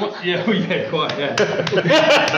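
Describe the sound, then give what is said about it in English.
An applause sound effect added in post-production: scattered, sharp claps that grow busier toward the end, mixed under people talking and chuckling. “I had some more applause in post.”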